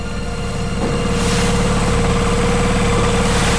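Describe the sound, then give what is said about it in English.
A boat engine idles steadily at sea by a lighthouse on a rock in the Atlantic, a loud, constant low rumble with a throbbing, vibrating texture and faint hissing above it, running without a break and with no voices. “As I sat in the boat looking up at the lighthouse, I thought about the advancements in technology that this rock in the Atlantic had seen”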